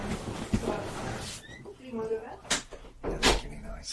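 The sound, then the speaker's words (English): A door is pushed shut, with a few sharp knocking thuds and clatters spread over a few seconds, while faint voices murmur in the background. “All right. I'm going to shut it.”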